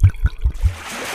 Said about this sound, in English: And the water rushed out of the jar as they tipped them over. The excess water ran off the altar, filling the ditch.